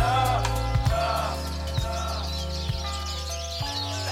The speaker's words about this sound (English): Hello, birds. I'm proud to say that these birds were actually recorded outside my studio.